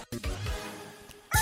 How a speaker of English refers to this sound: This is how it looked like 1,000 years ago. Just kidding, it's a rooster. These birds did a great job helping people wake up at dawn